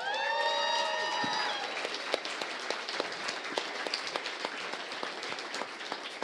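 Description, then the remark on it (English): A crowd at a book's publication-night event bursts into sustained applause for the author's wife, mother and father, dense clapping, with a high whoop or whistle of cheering at the start before the clapping carries on steadily. “And before we go on, I want to ask your wife, your mother, and your father who are here to stand up and get a round of applause.”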